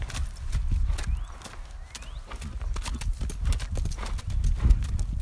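Horse hooves clip-clop steadily, a run of sharp, uneven knocks over a low rumbling background, with no talking.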